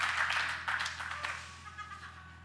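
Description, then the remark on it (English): A burst of audience applause, a dense wash of many hands clapping at once that gradually thins and fades over a couple of seconds, with no one speaking. “That's worth a clap.”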